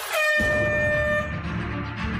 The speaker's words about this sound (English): I'm going to tell you right now. As soon as you hear the buzzer, all right? Let's go.